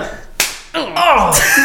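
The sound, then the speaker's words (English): A single sharp hand slap like a high five cracks out, followed right away by excited voices talking and exclaiming. “The high five is a slap.”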